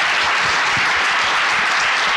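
Steady applause from an audience for a panel of speakers, many hands clapping in a dense, even wash of sound that holds at a constant loudness throughout, with no voices over it.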